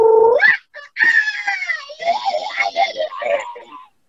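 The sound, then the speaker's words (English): A voice imitates a pug crossed with a rooster for an audition: a nasal, snorting wail that rises into a long, strained crowing cry, loud and wavering for several seconds. “I was like, wouldn't it be funny if I did like a pug mixed in with a rooster mixed?”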